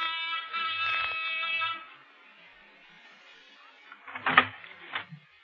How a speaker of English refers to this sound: Even the buzzer I pushed in the swank layout looks solid gold.